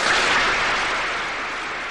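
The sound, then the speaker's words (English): A crowd gives a long standing ovation after a speech, a dense, continuous wash of clapping, loud and steady throughout, easing off only slightly toward the end. No voices are heard. “My understanding is that the crowd erupted in applause and a long standing ovation.”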